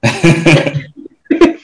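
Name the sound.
sniffling and throat clearing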